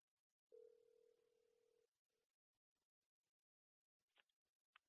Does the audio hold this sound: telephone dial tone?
yes